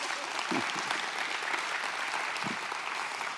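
An audience applauds steadily, a dense wash of clapping from many hands that stays even in loudness throughout, with a couple of brief low vocal sounds rising beneath it.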